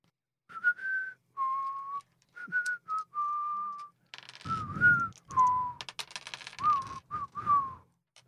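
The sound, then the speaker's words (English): A person whistles a short, wavering tune of a dozen or so notes, with bursts of clattering, rustling noise joining in during the second half. “Very bad whistling on my part, I apologize.”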